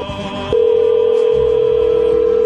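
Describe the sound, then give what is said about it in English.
An outgoing phone call's ringback tone, a call to broadcaster Matt Pauley of WTMJ: after a brief moment of low background noise, a steady electronic ring tone starts abruptly and holds loud and unbroken to the end, with no voices. “I want to just okay, it's ringing. Let's pot it up.”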